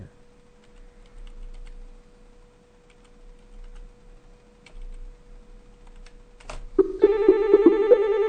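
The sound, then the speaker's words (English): A telephone rings loudly for an incoming call with a rapid, repeating electronic trill that begins abruptly after a stretch of quiet hum and a sharp click, continuing steadily to the end. “we tried to call Harvey Neiman, and he called us”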